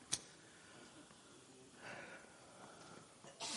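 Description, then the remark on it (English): A sharp, sudden sneeze bursts out right at the start, followed by quiet breathy rustling and then another short sneezy burst at the very end. No talking. “Bless you.”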